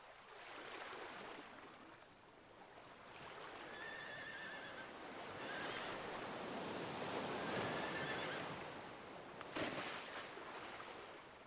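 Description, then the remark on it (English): Horses playing in the sea at a beach whinny and neigh several times in high, wavering calls over a steady wash of small waves breaking on the shore, with splashing in the water and a sharp splash near the end. “The horses are already in the sea, playing and splashing around.”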